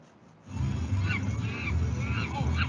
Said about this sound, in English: Whenever we would step out of our house, the monkey noises would start. So racist, and it's disgusting.